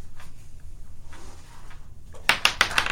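A quick series of sharp clattering clicks as dice tumble and bounce across a tabletop, a short burst of four or five hits after a stretch of quiet rustling; the dice are rolled for a sleight of hand check in a game, giving 15 plus 5.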